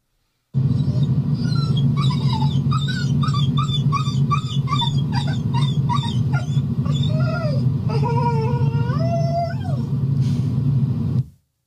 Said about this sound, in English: The next one that we have is less of a bark and more of a whine. Okay. But so it's a vocalization. It's still vocal.